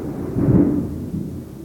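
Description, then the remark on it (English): A low, deep rumble of thunder during rain swells to a peak, eases off, then rolls on in a second softer wave, with no voices. “God's just clapping. you take this as very positive, and, you know, we need the rain.”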